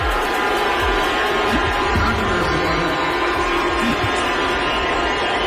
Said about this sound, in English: At the end of a show in San Francisco, Dave Chappelle brought Elon Musk on stage, and it did not go well. Chappelle told the crowd to make some noise, and the crowd immediately started booing at the Twitter CEO.